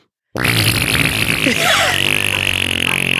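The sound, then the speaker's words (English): A loud, sustained raspberry-style fart noise made with the mouth, buzzing continuously for about three seconds after a brief silence, prominent with no talking over it. “To fart like that, like, that's all you have to think of.”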